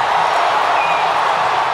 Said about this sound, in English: That ball is gone! A game-winning home run for Chris Morrell. Can you believe it? Listen to this crowd.